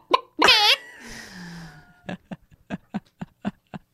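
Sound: person imitating a chicken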